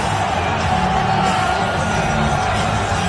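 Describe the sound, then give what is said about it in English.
A large arena crowd at UFC 295 roars continuously as Donald Trump walks out, a dense wash of cheering with scattered whoops and yells rising out of it, loud and steady for the whole stretch with no single voice standing clear. “Listen to the crowd right there.”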